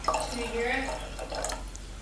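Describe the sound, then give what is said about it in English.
California white wine pours into a glass, a steady splashing trickle with a bright, rising gurgle as the glass fills, lasting about two seconds. “It sounds like a little waterfall.”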